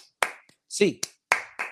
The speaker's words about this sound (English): Hands up, Bruins fans. Eight clap time, baby. And 1, 2, 3, 4, 5, 6, 7, 8.